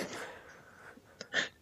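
A single sneeze: a quick sharp intake followed by an abrupt, explosive burst, standing out briefly against a quiet, breathy background with no talking.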